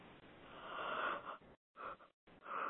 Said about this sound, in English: I'm yawning.